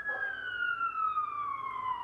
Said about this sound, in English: And then there's an ambulance outside. Perfect!